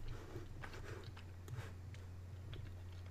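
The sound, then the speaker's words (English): Chewing on a candy bar, with irregular soft crunching and wet mouth clicks repeating over a few seconds against a steady low hum. “Enough to turn my microphone off so everybody didn't have to hear me chew it.”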